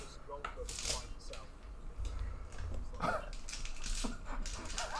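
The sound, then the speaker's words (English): Dice clatter and rattle as they are shuffled and picked up after a roll, a string of quick irregular clicks and scrapes with faint murmuring in the background. “My dad, you can hear shuffling, pick them up,”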